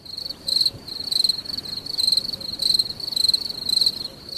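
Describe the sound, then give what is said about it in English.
Crickets chirp in a steady, rhythmic pulse of high-pitched trills, repeating about every half second at moderate volume, with no voices over them. “Can I get some crickets, please?”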